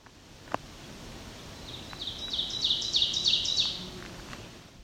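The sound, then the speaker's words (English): An Ovenbird sings a rapid series of repeated bright two-note phrases that build in loudness over about two seconds, against a quiet outdoor background. “This was an Oven Bird.”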